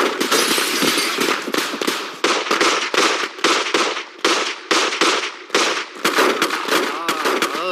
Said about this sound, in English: Uh-oh, better run for cover, partners. Some varmints are having a shootout.